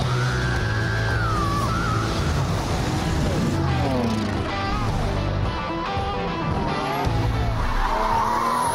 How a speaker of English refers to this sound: Oh, now we're on a racetrack. Oh, there's a skid. Oh, and there's a wreck. The cars are piling up.